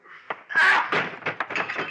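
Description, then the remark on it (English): A thrown chair crashes into a man with a loud wooden impact, followed by a quick series of clattering thuds and knocks as it tumbles and settles. “Then I found something to throw. Something I could aim just generally. A chair.”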